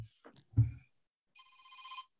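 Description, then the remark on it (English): After a brief muffled clatter, a phone rings during a recording with a single bright, electronic trill lasting under a second, swelling slightly louder before cutting off. “Turn your phones on silent, please, for the recording.”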